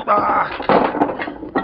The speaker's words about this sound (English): Suffering snakes. Why don't you watch your step? You knocked them pool balls all over the floor.